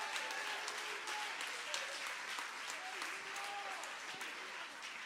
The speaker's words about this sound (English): Somebody say Jesus. He is the King of Kings and the Lord of Lords. Would you clap your hands if you believe what I'm saying?